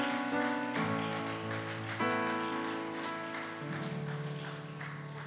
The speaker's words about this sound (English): Come on, why don't we clap our hands and praise him one more time.